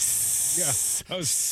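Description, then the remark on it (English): A person imitates a cat's hiss, a sustained breathy hiss broken by a brief pause, with short voiced vocal sounds at the start of each burst. “I was hissing like a cat.”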